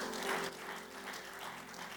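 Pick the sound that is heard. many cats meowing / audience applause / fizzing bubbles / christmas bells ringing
audience applause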